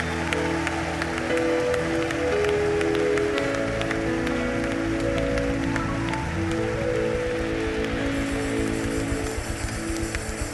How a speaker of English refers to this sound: I want you to give the Lord a mighty hand clap of praise. Come on, clap for Jesus.